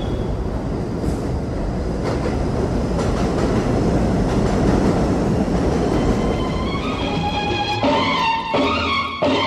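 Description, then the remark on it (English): A number 7 subway train rumbles and clatters loudly and steadily along elevated tracks, then a high metallic whine of wheels or brakes rises near the end. No one speaks. “And at many of the stops along the number 7 train, you'll find a Delgado office.”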